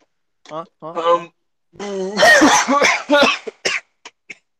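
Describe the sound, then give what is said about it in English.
A loud fit of sneezing and harsh, rapid coughing, preceded by a couple of strained vocal sounds and trailing off into a few short, isolated coughs. “Bless you. Is that a stroke? You gonna make it?”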